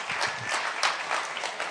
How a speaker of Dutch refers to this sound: En laten we ze een groot applaus geven.